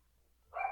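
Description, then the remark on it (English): After a brief hush, a dog lets out a single sharp, moderately loud bark near the end, with no talking around it. “Because the dog's going crazy and someone's about to come home.”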